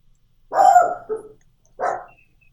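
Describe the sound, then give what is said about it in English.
Dogs bark: a loud, drawn-out bark, a quick shorter yip, then another full bark after a pause, with silence around them and no one talking. “Yeah, I do like that your dogs are like, girl.”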